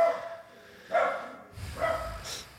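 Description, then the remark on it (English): A dog barks at home in a few short, separate bursts spaced about a second apart, moderately loud with a slight roomy echo, with no one speaking. “I'm not cutting it. Screw it. I got dogs. I'm at home.”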